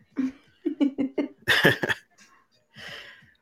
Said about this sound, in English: All right, so let me cough one more time.